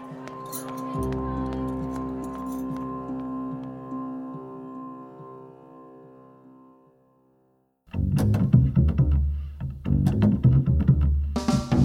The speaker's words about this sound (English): He led the little girl away from the station in short, soft strides. With each step, the knives inside the bundle let out a soft clink.